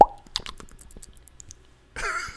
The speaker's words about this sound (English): I'm just pouring out a little liquor right now. Because you think you done did it. That sounded just... You heard that? The liquor came out.